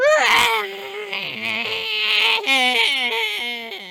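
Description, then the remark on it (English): An eerie, hissing wail from tentacles as they sink back into the water, rising and falling in a warbling, song-like cry, loud and unbroken for several seconds, its pitch swooping down and back up with a harsh airy hiss throughout. “The tentacles make their hissing horrible song as they sink back into the water.”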